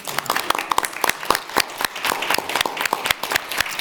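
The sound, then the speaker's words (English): An audience breaks into steady applause for the standing members of a stakeholders group of organizations, many hands clapping in a dense, crackling patter with sharp individual claps standing out, holding at a fairly even level for a few seconds. “A round of applause.”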